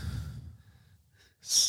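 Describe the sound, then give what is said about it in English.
Heavy breathing: a deep, rumbling exhale trails off into a brief pause, then a sharp, hissing breath rushes in loudly at the end. No talking. “Heavy breath.”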